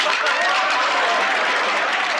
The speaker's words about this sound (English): And the applause picks up. Oh, does it ever. Louder and faster.